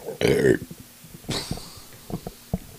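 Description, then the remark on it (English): A loud, croaky burp erupts, lasting about half a second, followed by a shorter throaty sound and some faint clicks and shuffling noises. “Is that your response to burp?”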